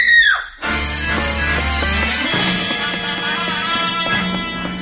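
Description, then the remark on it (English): A single loud, high-pitched scream bursts out at the very start, heard on the third floor of a hotel in Cairo, and quickly drops in pitch, then gives way to a dense, steady wash of busy background sound. “Just as I reached the third floor, I heard somebody scream.”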